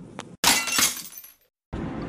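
A sharp crash of glass shattering, with a bright burst of breaking shards that rings and scatters for about a second before cutting to silence, then a low background hiss.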